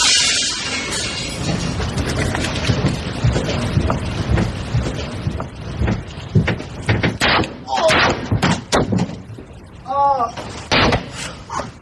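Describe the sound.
Glass shatters in a sharp, bright burst at the start, followed by a run of clattering knocks, thuds and rattling mechanical clicks, with faint murmuring voices beneath.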